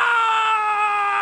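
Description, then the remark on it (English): A single loud, sustained high-pitched scream from the 2004 PlayStation 2 video game Van Helsing, heard in the opening screens as a stake comes down, holding steady and sliding slightly downward in pitch, without any talking. “Screams when the stake comes down in the opening screens.”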